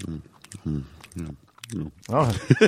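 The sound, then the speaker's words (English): A man chews a Snickers bar, letting out short hummed moans between bites, ending in a louder burst of crunchy, wet chewing layered with a drawn-out hum. “He moans while he chews.”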